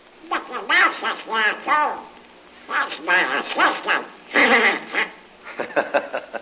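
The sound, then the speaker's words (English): A voice imitating Donald Duck squawks out several quick, garbled bursts of nasal, quacking chatter in a lively rhythm, loud, with short pauses between phrases, saying he likes Jungle Jim too, in an advertisement for the Comic Weekly. “That's Donald Duck telling you he likes Jungle Jim, too.”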